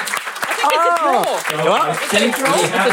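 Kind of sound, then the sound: crowd, applause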